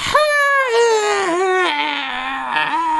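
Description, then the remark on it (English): A voice imitates the weird hissing, low howl of scarecrows: one sustained, breathy, wavering wail about three seconds long that slides downward in pitch with a raspy, hissing edge, loud and steady throughout. “And the scarecrows all kind of stare at you and make this weird hissing kind of low howl noise.”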